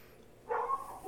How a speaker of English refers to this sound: Ooh. The hunting dogs are here now. That's what you do next, is release the hunting dogs. Release the hounds.